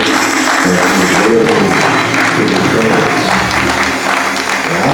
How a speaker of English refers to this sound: Oh, somebody ought to give God a hand clap of praise.